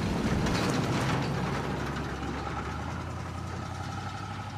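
A car engine idles with a steady, low, throbbing rumble, fairly loud, easing slightly in level over a few seconds with no voices present.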